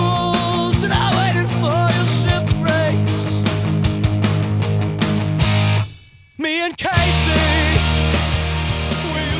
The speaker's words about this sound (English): Oh, the tambourine.